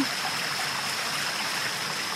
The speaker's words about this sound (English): And then we came up on this cute little creek.